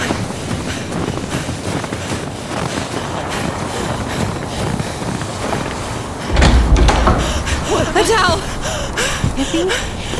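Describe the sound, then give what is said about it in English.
A door is opened about midway through, and a steady rush of wind and outdoor noise suddenly grows louder and stays up, with a low rumbling gust. “Door. You're letting the heat out.”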